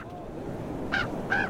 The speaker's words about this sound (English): Those are ravens.